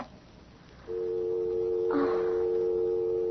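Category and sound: signal or alarm, telephone hung up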